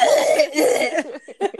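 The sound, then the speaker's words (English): Loud coughing in a rough, continuous fit of harsh bursts that break into a few shorter, choppier coughs near the end, with a laugh-like quality to some of them. “As you guys can tell, Another we're one starts coughing.”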